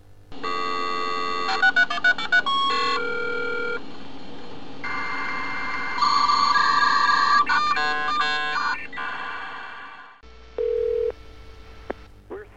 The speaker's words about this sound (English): A computer, dial 911. Dialing?